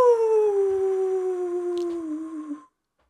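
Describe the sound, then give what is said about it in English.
A person gives a single long, sustained howl in imitation of a wolf, the pitch sliding slowly downward for over two seconds before cutting off, loud. “All right, well, if I'm a wolf howling at the moon, it's just kind of a bit more of a animalistic, bit more, you got to call your pack, call your everyone in.”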